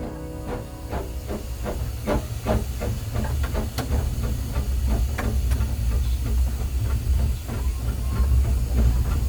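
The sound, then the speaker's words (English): A steam locomotive hisses loudly and continuously, with a steady rhythmic clatter of beats running through the whole stretch and no voices. “One of the biggest draw cards of Steamfest is being able to jump aboard a steam train and take a ride along the picturesque railway lines of the Hunter region.”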